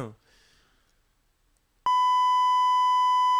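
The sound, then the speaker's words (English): A loud, steady censor bleep cuts in sharply and holds for about a second and a half, after a brief trace of a voice and a quiet pause. “Mute it. Mute it. Ready, ready, beep.”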